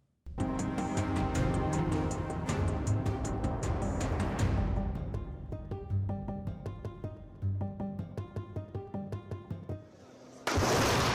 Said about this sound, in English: Gazan residents appeared unfazed by the sound of another explosion in the city.